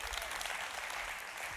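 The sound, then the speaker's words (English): A church audience at Go Church applauds steadily, a dense wash of many hands clapping at once with no breaks, sustained at an even, moderately loud level throughout, while the speaker gets something to drink. “Hey, you clap so I can get something to drink.”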